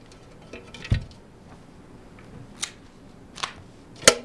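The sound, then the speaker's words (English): A lantern being lit: a few sharp clicks and a brief scrape, spaced out over a few seconds against a quiet, faint hiss, with no talking. “Now, light the lantern.”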